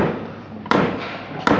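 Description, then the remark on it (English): Two sharp wooden knocks from a hammer banged during a court hearing, spaced under a second apart, each a loud thud with a short echo over a faint background hiss. “For the last time, will whoever's banging that hammer please stop it?”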